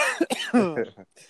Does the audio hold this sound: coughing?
yes